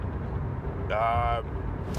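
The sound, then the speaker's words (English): Steady low-pitched rumble of road noise inside a moving car, continuous throughout, with a brief tonal hum rising above it for about half a second midway. “I'm recording in my car. I'm literally on my way to somewhere that I have time to record a podcast.”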